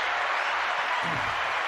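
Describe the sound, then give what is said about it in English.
A steady wash of hand clapping, dense and continuous like applause from several people, holding at an even loudness for under two seconds with no voices. “I got to give him a clap for that.”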